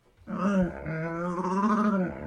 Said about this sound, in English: There's a camel. I like that one.